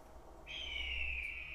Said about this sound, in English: Here and there you hear hawks circling above, crying out their cries.